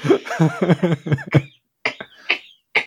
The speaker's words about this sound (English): Yeah, I kind of cough into my pint.